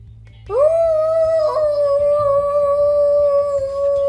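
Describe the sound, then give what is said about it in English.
A person imitates a dog's howl, a single long sustained note that rises, wavers slightly and holds steady for several seconds, loud, with a faint background hum. “Whoa. Are you a wolf? Or just a dog? Dog.”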